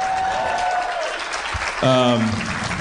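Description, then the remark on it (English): A crowd applauds steadily, a dense wash of clapping hands filling the whole stretch, with a brief whoop or shout rising above it near the end. “It's amazing that people clap for that.”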